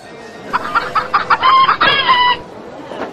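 A handful of short, sharp hen clucks in quick succession, followed by a loud, drawn-out rooster crow, then quiet farmyard background.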